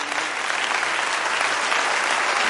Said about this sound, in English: Let's stand and give all these people a hand clap.